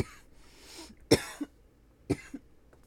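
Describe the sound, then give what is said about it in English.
A harsh coughing fit after smoking a dab taken too hot: two heavy, raspy coughs, each followed by a smaller hacking cough, with breathy wheezing in between and no talking. “I usually take dabs way too hot, so that's why I fucking cough up a storm like that.”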